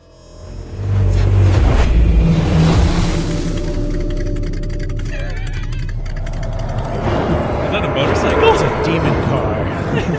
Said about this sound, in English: The portal opens and all these motorcycles come through